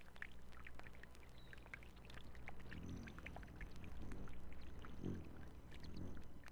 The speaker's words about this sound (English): The rippling brook.